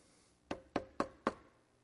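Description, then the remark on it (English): Four firm knocks on a door in a quick, even rhythm, each a short solid thud with a brief ring, fairly loud against a quiet background with no talking. “And it says he came up and knocked on the door.”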